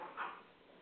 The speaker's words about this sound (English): Dogs understand English. Okay, sorry about that. Puppies were rioting